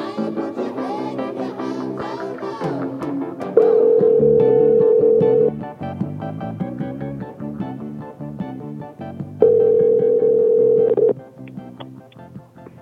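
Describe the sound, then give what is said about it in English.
An outgoing phone call rings twice, each ring a steady, loud electronic tone lasting about two seconds, heard over busy background music with a gap of several seconds between rings. “No further ado, let's get Danny Diggler on the phone right meow.”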